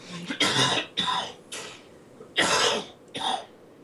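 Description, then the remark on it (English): A sick person coughs in a series of harsh, breathy coughs in irregular bursts, some in quick pairs, with a throat-clearing quality. The coughing is moderately loud and stands alone, with no talking. “I don't know if anybody can hear the coughing in the background, but that's what I sounded like up until a couple days ago.”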